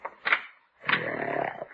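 A Great Dane lying under a bed snores in two rough, rasping breaths, a short one followed by a longer, rattling drawn-out one, with a gravelly low rumble and no voices.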